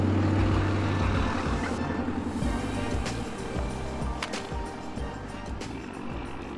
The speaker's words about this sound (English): I'm out here at the Trinidad truck stop, Trinidad fuel stop right behind me there. And this is the intersection or the roundabout that comes off of Interstate 25.